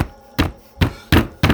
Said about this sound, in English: Thursday, October 14th. We hear some violent knocking.